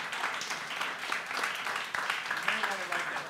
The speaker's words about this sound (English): Thank you. Thanks, everyone. Let's have another big round of applause.